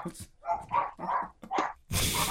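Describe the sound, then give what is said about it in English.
A dog barks four or five times in quick succession, fairly loud, the last bark harsher and noisier than the rest. “There's a dog.”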